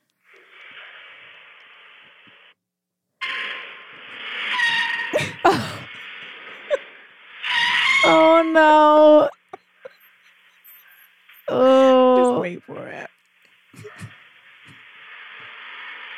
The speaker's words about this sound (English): And then you have to hear the amount of squealing, screeching that was happening after he got wheels on the ground trying to get out. Please listen to this.